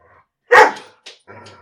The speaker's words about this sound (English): See, can you hear that? My dogs are like a roughhousing right now. I can hear that. It's like, are they possessed by the demons? No, it's them roughhousing.